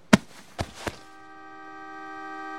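A few sharp knocks, then the horn of Spike's car blares in one long, steady honk that grows slightly louder as it holds. No one speaks.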